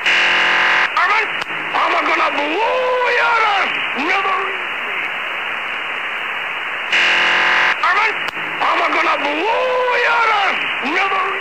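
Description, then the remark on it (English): A hissy, band-limited shortwave radio transmission with warbling, gliding electronic tones, a number-station broadcast based in Albuquerque, New Mexico. A roughly six-second sequence plays, then repeats almost identically, steady and fairly loud throughout; the full cycle of beeps lasts 2 minutes. “The entire cycle of beeps in Yosemite lasted 2 minutes each time.”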